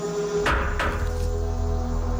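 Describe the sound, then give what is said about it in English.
Two sharp knocks land about a third of a second apart on the cabin door in the film Knock at the Cabin, followed by a steady low hum that carries on underneath with no voices. “That's the knock part. The knock. That's the cabin door.”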